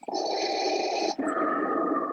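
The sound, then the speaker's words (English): Heavy, raspy breathing through a child's Spider-Man mask, loud: one long hissing breath followed straight away by a second, lower-pitched one, with no talking. “It even breathes.”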